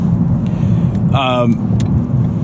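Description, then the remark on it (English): A steady, loud low rumble of a car rolling at a little over 42 km/h in packed westbound traffic on three lanes out of Toronto, near Colborne Launch, heard from inside, with a brief voice-like tonal sound rising over the drone partway through. “We got 3 lanes going west on the way out of Toronto that are just packed. We're at least moving.”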